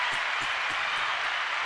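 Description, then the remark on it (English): A steady wash of applause, dense and hissy, with many hands clapping at once. It holds an even level for under two seconds, and no one speaks over it. “Let me get your clap ready.”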